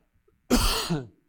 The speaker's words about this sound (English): Just a second. I got the tickle cough.